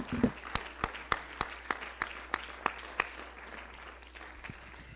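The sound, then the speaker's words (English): A church audience gives the Lord a hand clap during a sermon, clapping their hands together in a steady, even rhythm, about a dozen sharp claps that ring out clearly before the clapping trails off into quiet. “Give the Lord a hand clap if you believe it.”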